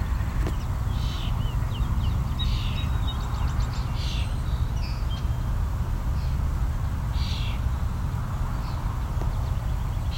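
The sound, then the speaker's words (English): European starlings give harsh, scratchy squawks and chattering calls in short, scattered bursts over a steady low rumble of background noise, moderately loud. “You can also hear some European starlings as well. There's our starlings squawking.”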